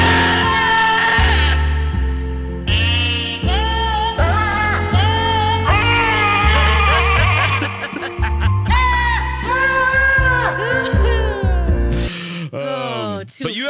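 Goats bleat a Christmas melody over a steady instrumental backing, their wavering, nasal cries rising and falling in tune for several phrases before a final drawn-out bleat trails off alone.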